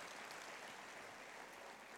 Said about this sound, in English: Well, let's just give him a nice big hand clap and welcome him tonight.